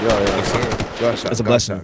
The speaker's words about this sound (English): Gunshot.